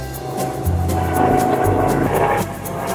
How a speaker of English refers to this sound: LA, man, you get the helicopter. Yeah, it's crazy. We didn't expect a helicopter. We forgot about the helicopters.